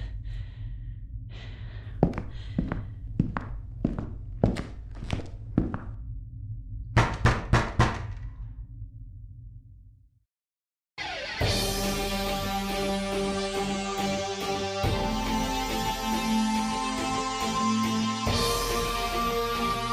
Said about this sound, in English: She's still hammering away at the door.